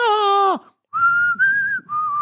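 Clear, strong human whistling by a featured whistler carries a short melody of a film's title theme in sustained, gently gliding notes, following a brief rich, buzzy low tone that drops off, with a faint low rumble underneath.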